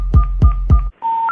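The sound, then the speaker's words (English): Three loud, evenly spaced telephone keypad tones beep in quick succession, each with a soft click, followed after a brief gap by a steady electronic tone that steps up in pitch. “Give me all your numbers so I can phone you.”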